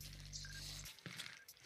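A water bottle squished and handled, with liquid dripping: a low muffled rumble at first, then crackly plastic creaks and a few sharp clicks. Nobody speaks.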